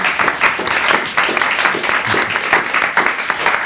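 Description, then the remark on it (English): An audience bursts into steady applause for the Kevin McCallister Foundation for Unwanted and Forgotten Children, a dense, loud patter of many hands clapping at once that holds evenly for a few seconds without any voices over it. “Round of applause for the McCallister Foundation.”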